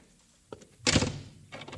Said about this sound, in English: I want to shut the front door, that's all.